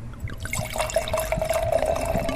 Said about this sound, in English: Well, let's hear my favorite sound, the sound of wine going into the glass.